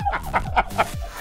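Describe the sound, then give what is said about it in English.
A chicken clucks in a quick series of four or five short, throaty bursts, clear, with no talking over it. “Anyway, good morning, and good morning to your chicken as well.”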